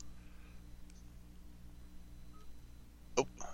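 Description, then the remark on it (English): A steady low electrical hum runs throughout, then two short, high-pitched electronic beeps sound in quick succession near the end on a phone line during a call. No one speaks. “I heard two beeps. We still there?”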